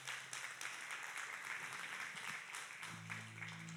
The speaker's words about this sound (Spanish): Colóquese en pie y dele mejor aplauso al Señor y vamos a orar.